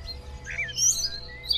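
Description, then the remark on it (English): A blackbird sings a short, fluting phrase of warbles and high chirps, clear over a low background rumble, with no voices present. “Blackbirds top the charts for me.”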